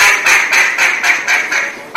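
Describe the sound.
A homemade duck whistle quacks in a rapid, steady run of about seven nasal, raspy bursts, loud, with no talking over it.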